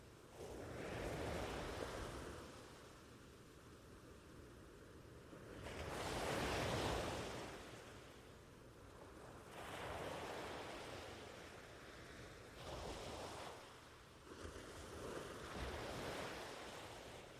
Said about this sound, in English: perhaps in a moment, you may also become aware of the warm breeze in the air and the sound of the ocean waves.